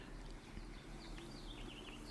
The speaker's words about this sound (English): Oh, birds chirping. They really are outside.